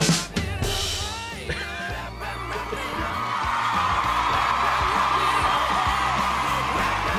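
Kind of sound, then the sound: crowd, applause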